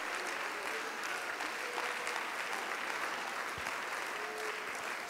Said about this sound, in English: With all your might, will you clap unto the Lord? Will you give a praise to him?